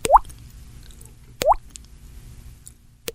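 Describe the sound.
A voice imitates a leaky faucet: three wet, plopping drip sounds made with the mouth, evenly spaced about a second and a half apart, fairly loud against a quiet background.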